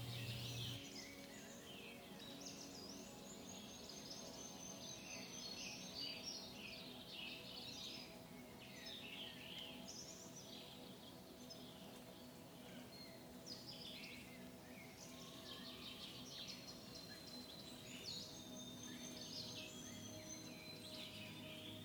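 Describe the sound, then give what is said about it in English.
Small birds in the undergrowth, startled by the noise of soft footsteps, chirp and twitter busily and continuously, with overlapping short calls above a steady low outdoor hum. No one speaks. “Even though your footsteps are soft, the noise startles small birds in the undergrowth.”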